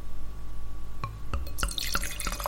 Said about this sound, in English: I think we should start with the Riesling. Let's do it. Yeah. So let me pour some for you.